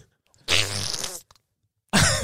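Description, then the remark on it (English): A loud, raspy fart held up to a phone during a phone call, lasting under a second, with a low buzzing rumble and a muffled, phone-like quality, followed by a brief pause and the start of another burst. “did you hold the phone to your ass as you farted?”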